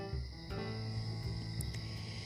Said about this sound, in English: As I sat here tonight, I'm in the cool night air on my porch swing, and I'm listening to all the crickets and whatever other kind of bugs are out here. I'm glad I'm in a screened-in porch.